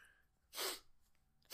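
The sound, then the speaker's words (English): A sharp sneeze from a person who is sick bursts out of near silence, followed a moment later by the start of a second forceful sneeze at the very end. “Sorry, guys. I got sniffles. I got coughs.”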